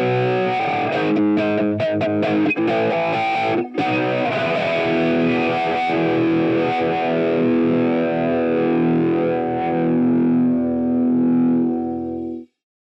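A loud rock passage with heavily distorted guitar tone and a punchy, slapped bass line; sharp percussive attacks crowd the opening seconds before a sustained dense chord swells and cuts off abruptly.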